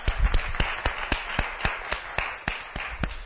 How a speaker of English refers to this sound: All right, so let's give God a warm hand clap of praise.